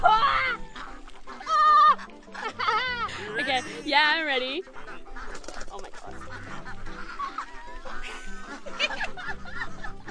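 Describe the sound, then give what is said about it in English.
A crowd of about 10 ducks squawks and quacks excitedly while rapidly eating duck feed from a person's hand, loud overlapping calls coming in rapid bursts, while a couple of people speak and exclaim over the commotion. “got a fist full of duck feed and about 10 ducks are just going for it.”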